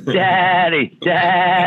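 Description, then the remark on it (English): A goat bleats twice in quick succession, two loud, wavering cries separated by a brief pause, with no talking over them. “You got them goats, man. Just put a gun on back of them goats, you know.”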